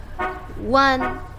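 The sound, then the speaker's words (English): Three quick car horn beeps in a row, the middle honk longer and louder than the short toots on either side, clear; it is Hector, Mrs. Rodriguez's oldest son, arriving to take her to work. “Hear that car horn beeping?”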